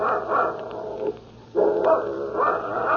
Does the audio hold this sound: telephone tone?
no